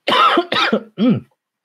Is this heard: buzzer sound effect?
no